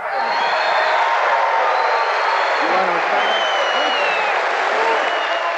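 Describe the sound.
A large crowd on its feet in loud, sustained uproar, with applause, shouting and yelling voices and laughter blending into a dense roar that holds steady from start to finish.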